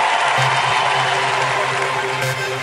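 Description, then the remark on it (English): An audience claps their hands in a dense, steady wash of applause with crowd noise mixed in, holding loud and even throughout, with no clear voices. “All the people who are walking into a season of success, clap your hands.”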